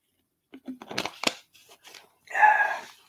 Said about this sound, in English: I'm just going to drink some water here.